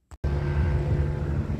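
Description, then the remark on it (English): A helicopter drones steadily overhead at 11:20 p.m. near the Museum of History and Arts in Ontario, flying directly over repeatedly, back and forth; a loud, low rumbling engine noise with humming tones that holds constant after a brief click at the very start. No one speaks. “terrorizing and stalking me with helicopter, flying directly over me repeatedly, as I capture again at this moment at 11:20 p.m.”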